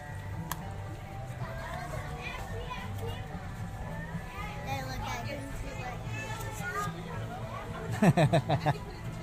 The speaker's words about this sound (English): Now join my family on our 2-day trip to Walt Disney World, brought to you in immersive binaural sound, as we enter Adventureland and immediately stumble into a crowd seeking treasure and adventure with the famed Captain Jack Sparrow.